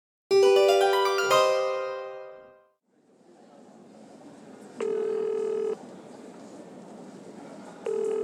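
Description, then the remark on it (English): A bright chiming tone rings out and fades, then a telephone line hisses and two long, steady ringback tones sound a few seconds apart, clear, with no one talking, as a phone call is placed to the reception of Hotell Blåsippan. “It is over the phone”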